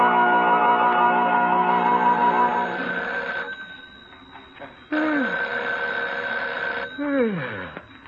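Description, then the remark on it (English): A telephone bell rings loudly in two long bursts separated by a brief pause, each ring bright and metallic with a slightly echoing, wavering tail. “Is the phone ringing?”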